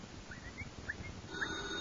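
A telephone rings once, a short electronic trill rising out of a low, muffled rumble of room noise with a few faint chirps before it.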